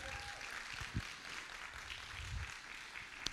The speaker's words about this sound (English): I wish that you would clap this morning like you actually believed it and not just like a golf clap this morning.